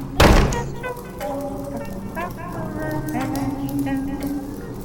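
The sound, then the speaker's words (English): A door slams shut with one loud thud right at the start, then people talk over a low background murmur. “And shut the bleeding door.”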